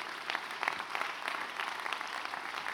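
An audience claps together in a dense, steady wash of applause, many overlapping hand claps blending into a continuous crackling roar with no voices rising above it.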